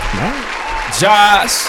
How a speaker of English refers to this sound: Let's give another round of applause if we can.